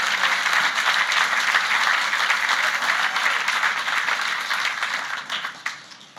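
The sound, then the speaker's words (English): A crowd claps hands to affirm belief in the word of God, sustained, dense applause, a steady wash of overlapping claps that stays loud before tapering slightly near the end. “Clap your hands if you believe the word of God.”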